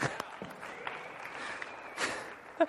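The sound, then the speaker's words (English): An audience applauds for James Strong with a steady, dense patter of many hands clapping, fairly soft throughout, with a few sharper claps standing out near the end. “Round of applause for James Strong.”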